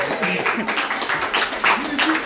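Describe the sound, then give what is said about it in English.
A live crowd in a room claps steadily in a dense, continuous patter as a guest speaker is introduced, with a few voices cheering and calling out over the applause throughout. “Like, I ask the questions, I don't need to do the work of clapping as well, no.”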